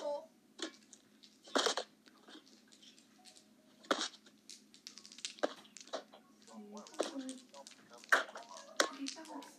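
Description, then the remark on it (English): Irregular tapping and knocking on a phone, a scatter of sharp hits, some louder and some soft, with faint murmuring voices in the background. “I don't think it's a good idea for you to hit the phone like that.”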